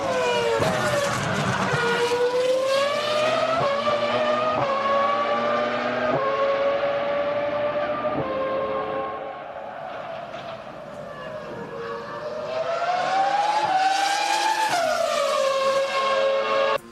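A Renault V10 Formula One car, brought back by the Renault team and driven by Alonso in Abu Dhabi as a side event at the season's last race, screams at high revs, pitch climbing and dropping through gear changes, loud and continuous, easing off briefly midway before roaring back up.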